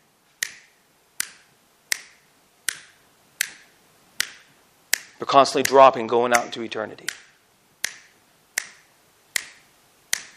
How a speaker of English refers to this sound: 70,000 people die every day without hearing the gospel. 70,000 people. I'm not clicking my fingers even close to being fast enough.